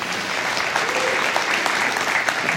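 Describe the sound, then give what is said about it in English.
An audience applauds steadily, giving the Lord a cheer, a dense, even wash of clapping that holds at the same loudness throughout, with faint voices cheering inside it. “You should be giving the Lord a cheer for that.”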